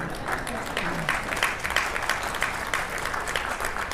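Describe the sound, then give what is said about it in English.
A workshop audience claps steadily for several seconds, a dense, even patter of many hands at a constant level, with no clear voices coming through. “So hold your applause, really.”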